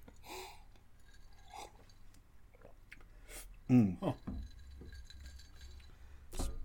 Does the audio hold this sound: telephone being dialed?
no